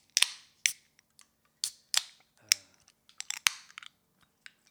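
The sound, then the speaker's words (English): A bottle of Bang Bang beer being opened: a quick series of sharp metallic clicks and snaps, irregularly spaced, with one crisp louder pop midway through and no talking. “All right, time to open her up.”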